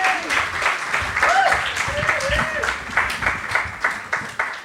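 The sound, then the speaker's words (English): A crowd applauds steadily for a guest at the host's call, a dense wash of many hands clapping at an even loudness, with a few voices calling and cheering over it throughout. “Big round of applause”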